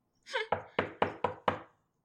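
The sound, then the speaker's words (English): Five loud, sharp knocks on a door, performed as Foley, in a quick, steady rhythm, clear, with a short rough sound just before the first knock. “And then there is a loud knock on the door. Can you do some Foley for that?”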